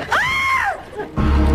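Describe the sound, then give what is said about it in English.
Actress Ruth Warwick, as the character Phoebe in a soap opera, lets out a single sustained, high-pitched scream that rises and falls over about a second as she turns around. The scream is loud and is followed by a burst of dramatic background noise or music. “At which point we hear Ruth Warwick's Phoebe screaming as she turns around, and there stands John Callahan as Edmund Gray.”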